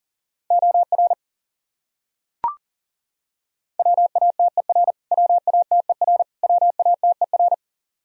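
Fast Morse code at 40 words per minute, sending the top 100 common words repeated, as a single steady mid-pitched beep keyed in quick dots and dashes grouped into short words, with one soft click in a brief pause and no voices.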